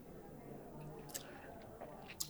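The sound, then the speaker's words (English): A quick sip of Islay whisky being tasted: soft, wet mouth sounds with a couple of brief smacking clicks over a quiet background hiss. “The finish, I'm going to take another quick sip right now.”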